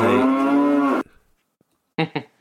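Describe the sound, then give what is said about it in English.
A cow lets out one loud, drawn-out moo lasting about a second. After a brief quiet pause come two short, clipped lowing calls in quick succession, clear, with no talking. “And he was on the last episode, he did a... audio question with cows.”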